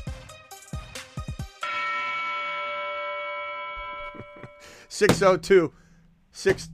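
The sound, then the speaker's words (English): A small bell is struck once and rings out clearly, its bright tone slowly fading over a few seconds. Brief voices come before it, and people start talking again as it dies away. “And we're talking about a bell, okay? A bell that you're going to ring.”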